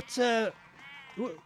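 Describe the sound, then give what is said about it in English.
Sheep being taken off to slaughter bleat twice: a loud, wavering bleat is followed by a shorter, quieter one about a second later, with faint background noise in between. “What are you doing with all these sheep, may I ask?”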